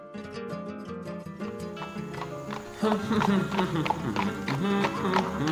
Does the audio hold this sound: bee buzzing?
no